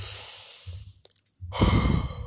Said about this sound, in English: Let me do that yoga breathing exercise